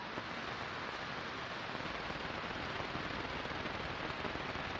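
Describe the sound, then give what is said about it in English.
Anti-aircraft cannon fire rattles on without pause, a dense, loud wall of rapid blasts blurring into a steady roar for the whole stretch, with no voices. “I had a terrible inkling the airlock was for easy, high-altitude disposal of prisoners, and we could feel the impact of what had to be the Cathedral's anti-aircraft cannons.”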